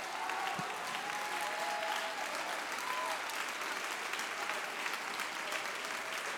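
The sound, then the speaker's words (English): An audience claps their hands in a steady, dense wash of applause that holds at an even loudness throughout, with a few faint voices and tones just audible beneath. “Now, there is biblical reference to do what you're doing right now. The Bible said in Psalm 47, oh, clap your hands, all ye people.”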